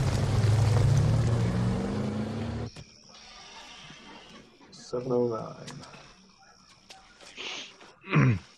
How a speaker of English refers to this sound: Yeah. Big old wrecking truck.